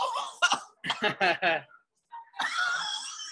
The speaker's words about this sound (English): …'s now incapacitated because of the chili. Not doing it, it makes me cough.